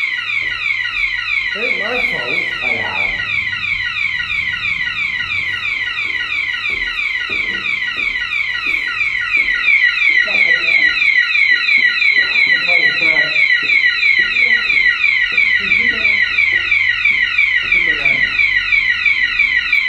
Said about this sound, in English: So for those who wanted fire alarms, we're inside the Temperance Hall and the fire alarm is just going off.